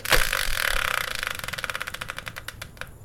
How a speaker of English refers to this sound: So let's bring in the Wheel of Fortune style spinner and find out what today's subject will be.